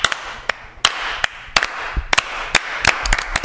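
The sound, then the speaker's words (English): Sharp, scattered hand claps ring out at an uneven pace, a few at first and then more closely spaced toward the end, building into slow, sparse applause with no voices. “A slow building applause!”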